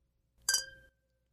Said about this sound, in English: All right. And we clink.